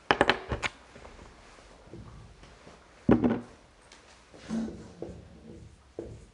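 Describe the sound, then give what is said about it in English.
Short squeaky strokes of a marker on a whiteboard as a verse is written in Hebrew script, coming in uneven bursts, a quick flurry at the start, then scattered scribbles and pauses. No one speaks. “I'll write this on the board because it's a little bit easier to see what's happening in the Tanya if we have the Hebrew.”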